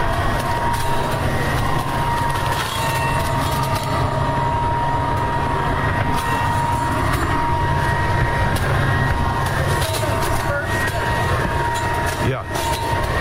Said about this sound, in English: Just blowing so I can pick these leaves up. I'm going to walk over here close to steps. You'll probably hear the leaves going into the vacuum.